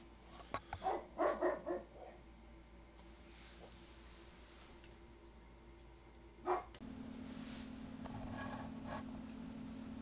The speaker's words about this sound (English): Apologize for that. The dog was barking at someone walking by.